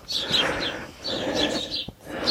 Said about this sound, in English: And you hear all the chattering birds.